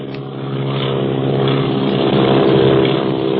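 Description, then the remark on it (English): A propeller airplane engine drones loudly and steadily overhead, its humming roar swelling slightly as it passes, with no voices. “Where did that other plane come from? Look, it's following Clint and Barney.”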